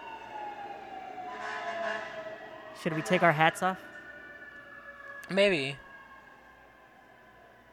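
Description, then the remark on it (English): A fire truck siren wails through the whole clip, its steady high tones sliding as it passes, while people speak briefly over it in two short bursts. “Let's wait for the bus the fire truck to pass.”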